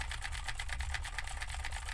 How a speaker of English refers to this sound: Now I am typing on a keyboard with Cherry MX Blues to see how much of my voice versus how much of the keyboard it picks up.